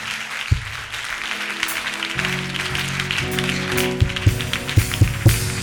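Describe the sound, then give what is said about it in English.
An audience claps their hands as they begin to pray, in a dense, continuous patter, with a few sharper, louder claps standing out near the end over a low steady hum. “Clap your hands and begin to pray.”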